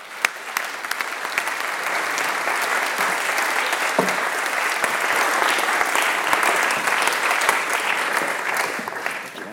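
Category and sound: crowd, audience applause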